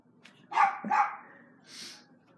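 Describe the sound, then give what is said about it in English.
Two sharp, loud dog barks in quick succession in the background, followed by a softer breathy sound, with a faint low hum underneath. “You can probably hear dogs in the background.”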